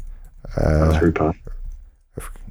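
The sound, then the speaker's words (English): A few sparse clicks of keys as someone types a search for 'power switch' into Google on a computer keyboard, with a short voiced murmur partway through and quiet gaps between keystrokes. “I'm typing into Google, power switch for...”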